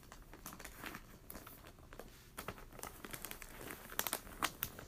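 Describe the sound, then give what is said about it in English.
Steady crinkling and rustling of paper being handled, with irregular sharp crackles that grow a bit louder and more frequent toward the end. No one speaks. “But anyway, this is a cute paper.”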